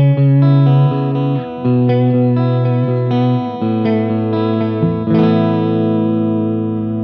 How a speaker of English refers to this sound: Speed about 2 o'clock. And let's switch the intensity. Roll the speed back down, depth about halfway. So this is the more intense setting for the vibrato. So you see, this gets pretty out there.